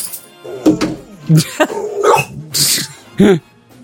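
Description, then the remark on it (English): A dog makes a string of short vocal noises, yips, grumbles and huffing barks in an irregular rhythm, each burst clear and fairly loud against a quiet background. “Hi, dog. Hello, dog.”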